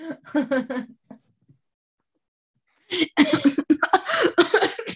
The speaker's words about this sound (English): Oh, what's happening? Oh, hail. She's choking. Oh, hail. Don't breathe like that. Don't breathe.